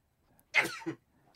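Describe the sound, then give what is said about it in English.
A single sharp sneeze bursts out loudly, a breathy explosive spray followed by a short lower vocal tail, with quiet around it and no talking. “Bless you.”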